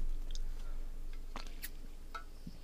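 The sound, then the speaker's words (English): Someone quietly sips a Starbucks coffee drink, a few short wet slurping and swallowing noises spaced across a few seconds with no talking. “Sips Starbucks.”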